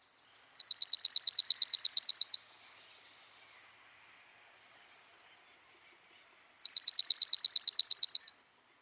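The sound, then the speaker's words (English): Two bursts of rapid, high-pitched trilling bird song, each about two seconds long, separated by a long silent pause. The trills are clear and steady, with no other sounds. “Now, let's listen to a different species.”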